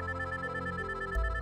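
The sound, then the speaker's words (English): A mobile phone ringtone plays steadily and fairly loud by a pool, a sustained electronic melody of bright, clear tones with no voices over it, as a call comes in from the British Embassy. “Ronson jumped as his mobile phone rang.”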